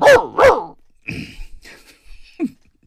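A dog barks twice in quick succession, loud, then softer scuffling noises follow, ending with a short high yelp.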